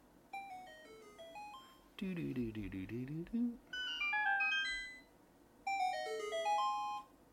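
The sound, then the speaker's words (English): A video game secret discovery jingle, heard when a secret door is opened or a secret cave is blown open, plays several times in versions from Ocarina, Wind Waker, Twilight Princess and Skyward Sword, each a quick run of bright, stepped chime notes climbing in pitch. One lower, voice-like rendition sits between them. “But here, like if you open a secret door or you explode a secret cave or whatever, here's the sound. Secret.”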